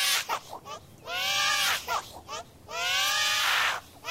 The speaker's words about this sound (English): It's a demon baby when it cries, and when it's happy, it turns into this... a human thing.